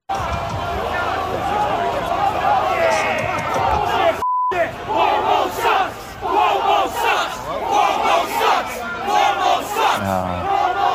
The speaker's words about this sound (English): However, it did get closed down, and they sealed off the entrance to the place. But the crowd around the building had a very appropriate chant to give to the state of New York. Listen.